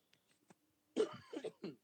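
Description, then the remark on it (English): A quick run of three or four harsh, hacking coughs follows a moment of near silence, moderately loud, with no talking around them. “Yeah, that's Corona cough.”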